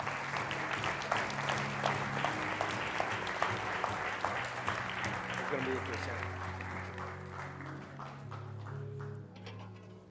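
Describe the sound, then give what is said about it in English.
An audience claps for the kids in a steady, dense morning round of applause lasting about ten seconds, fading slightly at the end, with sustained low musical tones and some murmuring voices underneath. “Come on, give our kids a round of applause this morning.”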